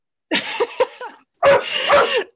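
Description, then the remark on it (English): Dogs bark in two short, loud flurries of rough, overlapping yaps, separated by a brief pause, with no one talking over them. “Sorry, and that's my dogs.”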